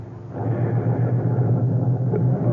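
car driving away

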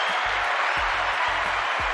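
clapping

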